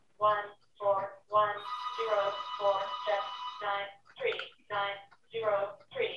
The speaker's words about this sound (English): I'm getting a phone call from Denton.